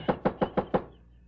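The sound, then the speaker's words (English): Five heavy, rapid knocks pound on the wooden front door of a house on North Roxbury Drive in an even rhythm, loud, then the sound stops and a quiet room tone lingers. “What do you think you're trying to do, break in this house?”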